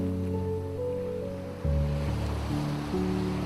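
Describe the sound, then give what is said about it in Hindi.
Steady ocean surf washes continuously on a deserted beach at night, its hiss blending with a sustained low droning tone. No one speaks. “लहरों के शोर को भी जैसे नींद आ गई थी।”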